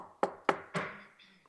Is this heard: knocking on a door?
yes